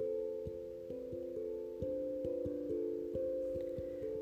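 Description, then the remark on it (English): A rapid series of steady electronic telephone dialing tones on a payphone after coins are put in the coin slot, each keypress a clear dual-pitched beep in quick succession, with no talking. “This happened in many occasions where I would put my coin, the drug world money, some of the money I would get, you know, from the customers, I put the coins in the coin slot for the payphone.”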